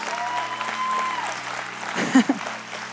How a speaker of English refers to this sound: yeah, you can clap your hands. It's so cool.